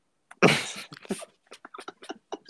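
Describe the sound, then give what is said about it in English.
A dog in the room vocalizes with one loud, rough burst, followed by a quick series of shorter, softer huffs and grumbles spread over the next two seconds. “Hush, dog.”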